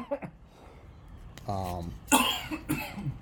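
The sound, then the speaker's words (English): A man coughs hard several times after inhaling soda the wrong way, a harsh burst followed by a strained, voiced wheeze and more rough coughs, with a brief vocal sound at the start. “He's coughing COVID all over the place.”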